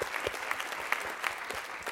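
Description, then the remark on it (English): A church audience at a morning service claps to thank God for his word, a steady, dense patter of many hands, loud and sustained throughout with no voices over it. “Would you give God a hand clap this morning and thank him for the word of God?”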